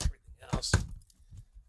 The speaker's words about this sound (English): I brought some beer here. Yeah, let's crack a beer. I can't do it with the mic in my hand.